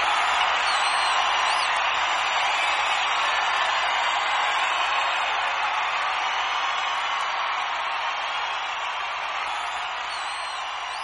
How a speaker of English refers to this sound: Well, we get rid of the last 10 seconds of the crowd cheering there.